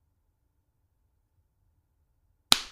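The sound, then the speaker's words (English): A single sharp, loud slap of a man's hand against his own face cracks out near the end after a long stretch of near silence, with a brief ringing decay. “going to slap himself”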